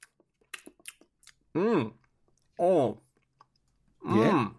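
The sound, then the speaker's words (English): A quick run of small, crisp crunches from chewing a hard Australian nut, followed by three drawn-out vocal hums or murmurs spaced evenly apart. “Kind of crunchy. It is crunchy.”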